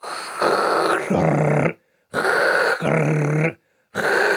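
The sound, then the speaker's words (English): A voice imitates a SodaStream carbonating a cold 1-liter bottle in three repeated bursts, each a hissing rush of CO2 going in followed by a low, buzzing, flatulent blurt, with short silences between sets. “There's the of the air going in the CO2, mm-hmm. and then that is the farting sound that's saying, please, for the love of God, stop.”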